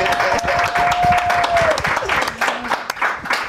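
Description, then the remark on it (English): A crowd applauding loudly and steadily for guests two performers, dense clapping with cheers and a whistle rising over it, sustained for a few seconds. “Oh, hot crowd for you guys.”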